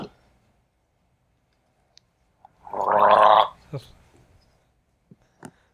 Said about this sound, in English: Why is he keep gargling water in his mouth? What does that mean?